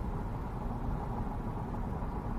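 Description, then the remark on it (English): Steady, low road rumble and tire hum fill the cabin of a Chevy Bolt electric car cruising at speed on a highway with the air conditioning off, an even wash of noise with no engine note rising above it and no voices. “So I've been driving for half an hour in this electric car, and I haven't used any miles.”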